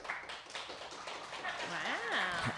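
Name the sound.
smattering of audience applause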